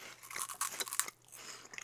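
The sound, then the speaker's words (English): Crisp crunching of a honey Cheetos chip being bitten and chewed, a quick burst of brittle crackles over about a second that fades into quieter chewing. “Look, you can see that crunch.”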